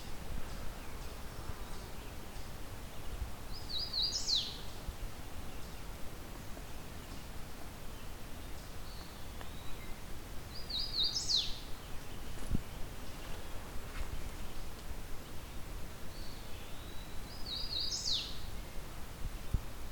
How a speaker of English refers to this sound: If you had told me a couple days ago I'd be finding a hooded warbler and think that, oh well, yet another one anytime soon, I would have been pretty surprised.